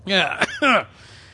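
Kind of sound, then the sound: human body sound, coughing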